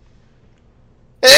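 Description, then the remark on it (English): After a stretch of near silence, one abrupt, loud sneeze bursts out right at the end, sharp and breathy with no talking around it. “Bless you.”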